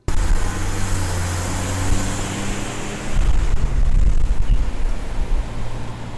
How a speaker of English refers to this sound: West State Street is occupied by a moderate amount of traffic. It lies just off North Washington and Court Streets.